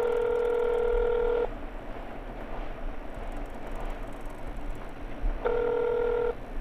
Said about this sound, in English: I froze as my phone rang.